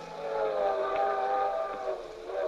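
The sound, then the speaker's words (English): A train whistle blows a long, steady chord of layered tones, fairly loud and sustained throughout, with a faint mechanical rumble of a moving train underneath and no voices. “We were on a circus train, the three of us in the trapeze act, going from Tulsa to St.”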